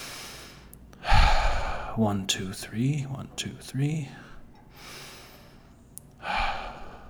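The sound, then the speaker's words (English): Two deep, airy breaths during a guided breathing exercise, one early and one near the end, with a calm voice slowly counting in between. “And by focusing on the deep breaths, you try your best to maintain your presence and anchor yourself in the breathing and the oxygen, which actually keeps your body relaxed.”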